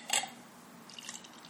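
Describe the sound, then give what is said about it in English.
Beer from Ithaca Beer Company of Ithaca, New York, pours into a glass with a short splashy gush at first, then a soft, steady fizz of foam and bubbles. It is quiet, with no voices. “All right, so let's pour this in.”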